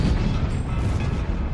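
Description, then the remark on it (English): A skyquake, a mysterious sonic boom from the sky: a deep, booming rumble rolls on steadily, loud and low-pitched, with no distinct sharp crack and no voices. “Mysterious sonic booms ramble from the skies everywhere, from the US to India and Japan.”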